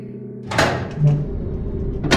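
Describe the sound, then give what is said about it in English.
A few sharp, spaced-apart knocks on a door bearing gold Chinese characters at the center of a corridor, over a steady low mechanical hum. “He arrived at the center of the corridor and knocked on the only door that displayed Chinese characters in gold.”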